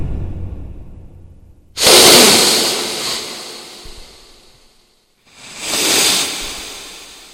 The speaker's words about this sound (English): Soap. Do you smell it? No. Sniff a little harder. With me.